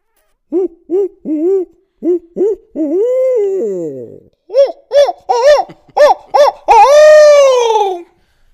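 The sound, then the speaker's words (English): A person imitates an owl with their voice: two loud series of short rhythmic hoots, each ending in a long, drawn-out, wavering call. “Well, owl hoot? Oh, yeah. Let's hear it.”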